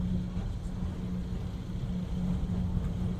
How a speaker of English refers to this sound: No, this is not a roller coaster. This is just a train. It's only going to ride flat like this.